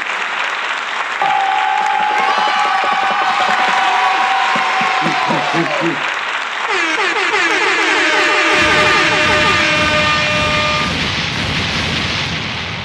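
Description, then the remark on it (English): A dense, sustained burst of crowd applause fills the whole stretch, with whoops and cheering voices rising over the steady clapping, loud throughout. “So please give my brother a fucking round of applause.”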